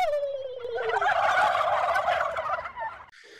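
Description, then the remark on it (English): A flock of turkeys at a poultry ranch gobbles loudly and continuously, their rattling, warbling calls overlapping in a dense chorus for a few seconds before cutting off, with no voices present. “There's a very long scene of him eating while showing the turkeys gobbling.”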